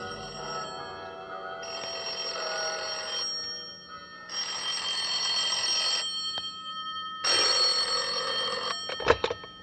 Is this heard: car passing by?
no